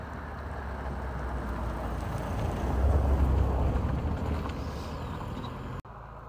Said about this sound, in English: Here's another car now.